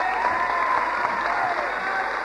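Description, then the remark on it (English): Steady applause from a crowd welcoming a woman from the West Auckland Assembly, a dense continuous patter of many hands clapping at even loudness throughout, with faint murmuring voices mixed in. “Give her a hearty clap.”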